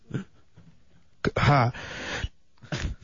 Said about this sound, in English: Yeah, who sneezed? Oh, I love that one.